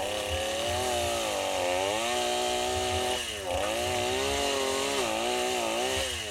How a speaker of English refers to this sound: Oh, heck yeah. Move that saw back and forth. It cuts better when you're, you know, doing the cross-cut chainsaw.